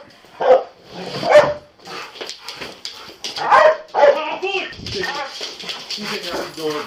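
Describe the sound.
A police dog barks in several sharp bursts, a few evenly spaced then a quick pair, with muffled voices and bustling activity filling the background.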